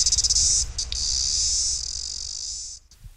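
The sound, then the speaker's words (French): Cicadas sing in a loud, shrill, continuous buzz that starts with a few quick pulses, dips briefly, then drones steadily before cutting off near the end. No voices. “Au rythme du chant des cigales, la vie de la Lutz n'est pas réellement animée ou passionnante.”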